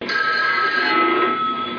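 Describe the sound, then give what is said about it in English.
A telephone rings in one steady, continuous burst, fairly loud and close with a slightly thin, band-limited tone. No one speaks. “I remember seeing this when it first, not when it first aired, but when I saw it when I was a kid, and even as a kid, she would pick up the phone and say hello.”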